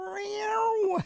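A single drawn-out cat meow, fairly loud, holding a steady pitch for about a second before dropping off sharply at the end.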